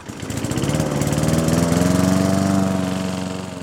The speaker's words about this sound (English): 90 decibels is the volume you get when you're using a lawnmower.